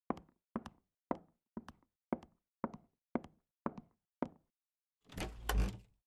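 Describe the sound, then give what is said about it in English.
Nine steady, evenly spaced, fairly sharp knocks on a wooden door at night, followed after a short pause by a longer scraping rush of sound like the door being opened. “Someone's at the door.”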